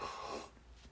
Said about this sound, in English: One second, let me take a sip of this coffee.